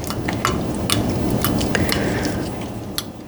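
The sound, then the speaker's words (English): About five or six small items for a boiled tea drop one by one into a little pot of water on a lit stove, making a scattered series of sharp clicks and light clinks over a steady low, hissing background. “And then I'm going to pour in some water into this little pot.”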